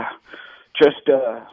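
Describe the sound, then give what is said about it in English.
A single short, sharp cough bursts out, with murmuring voices and throaty vocal sounds just before and after it. “I was just making people cough.”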